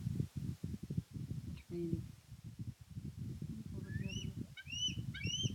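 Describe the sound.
A baby eagle cries in a series of thin, high chirping calls that grow more frequent toward the end, beneath a person talking steadily in the foreground.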